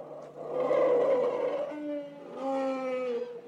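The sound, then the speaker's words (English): A caged, washed-up whale's long, moaning calls, two drawn-out tonal cries with a brief lower groan between them, loud, with no talking. “caged whale.”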